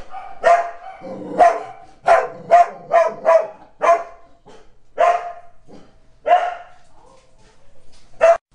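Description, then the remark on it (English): Dogs bark in a rapid, excited volley of sharp, loud barks, some in quick pairs, with short pauses between bursts and no talking. “Well, I told you, my dogs get crazy when we start talking about... I'm going to pause.”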